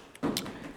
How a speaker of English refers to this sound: I did my own slap. Damn, yours sound good. Because it was skin.